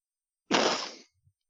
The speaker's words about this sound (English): Is that a fart? No, it was a snort.